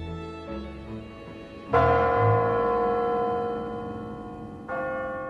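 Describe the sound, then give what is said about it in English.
The big clock bells in a tower of the Kremlin, in front of Red Square, strike midnight: soft chime tones lead into a heavy, resonant stroke that rings and slowly fades, then a second loud stroke follows near the end. No voices. “So the president has to finish in time for the clock to strike midnight. From the bells in the Tower of the Kremlin.”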